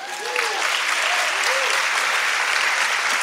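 Sustained applause from a church audience, given for the Lord, dense and steady clapping at a loud level throughout, with a few faint voices calling out over it.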